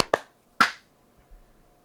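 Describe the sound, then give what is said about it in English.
Two sharp, bright hand claps for audio sync after a 3-2-1 countdown, in quick succession, the second slightly louder, each snapping off quickly over a faint steady hum, with no talking. “Clap sync. 3, 2, 1.”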